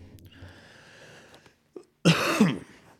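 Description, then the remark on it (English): A single harsh cough, away from the microphone, bursts out near the end after a stretch of low steady background hum and a brief soft thump; no one speaks. “I should look into like how to set up a mute button or a cough button or whatever”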